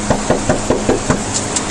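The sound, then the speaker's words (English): Police officers knock on a door: a quick series of about six firm knocks in a steady rhythm, followed by a couple of lighter taps, with no talking. “The video starts with the police officers getting out of the car and knocking on the door.”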